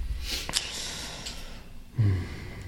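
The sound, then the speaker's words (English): A single quick, stifled sneeze with a sharp nasal burst, followed by a brief breathy snort a moment later. It is moderately loud, with no talking. “Bless you.”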